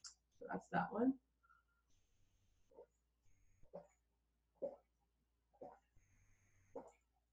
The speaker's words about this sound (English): I drink like a dog sometimes.